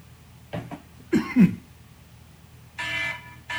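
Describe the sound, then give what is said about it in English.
A couple of quick throat-clearing bursts lead into a louder, rough cough, followed shortly after by a steady electronic beep-like tone. “Warning, a cough has been detected.”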